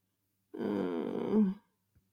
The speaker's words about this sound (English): I'm just openly coughing because I know we'll cut this out, so it's fine.